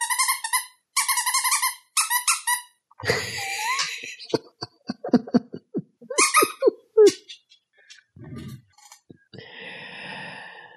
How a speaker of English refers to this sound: Sorry, that just was random but funny. What? I have a dog. He has needs, including squeaky toys.